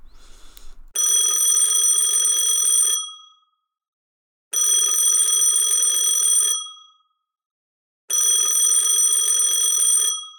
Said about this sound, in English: I answered the phone, distracted.